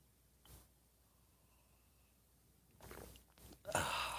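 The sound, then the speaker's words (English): After a quiet pause, coffee is sipped from a mug: a few breathy, airy slurps build up, the last one the loudest and longest, with no talking. “It's called the simultaneous sip and happens now.”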